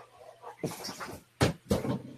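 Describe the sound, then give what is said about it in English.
A dog named Toby gets up and shifts about restlessly: soft rustling and shuffling, then two sharp, loud thumps or scrapes in quick succession, with no talking. “He's getting restless.”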